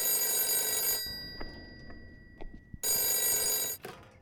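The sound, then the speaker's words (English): An old-fashioned telephone bell rings loudly in two long bursts, each about a second, separated by a pause filled with faint clicks and rustling; no one speaks. “When did I fix the phone?”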